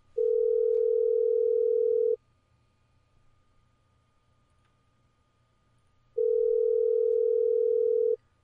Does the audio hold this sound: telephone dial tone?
yes